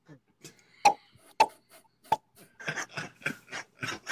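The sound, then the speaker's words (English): A hand-whittled wooden tree knocker strikes a tree three times, sharp hollow knocks spaced about half a second apart, followed by a stretch of people talking. “There he is, knocking on the tree.”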